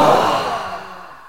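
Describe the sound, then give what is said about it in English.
During a breathing exercise, a group lets out a forceful, breathy "ha" exhale from the belly after holding the breath, one long airy push of breath that starts loud and gradually fades over about a second. “And on the out breath, making a sound from the belly with a ha.”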